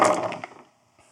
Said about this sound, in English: Toss those dice.